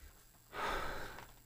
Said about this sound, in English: I am shallow breathing.